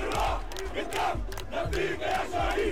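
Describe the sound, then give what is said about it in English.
A huge crowd at the funeral of Al Jazeera journalist Shireen Abu Aqle, a loud, dense mass of voices shouting and chanting together in rising, repeating calls with no single speaker standing out. “Huge crowds turned out for Shireen's funeral.”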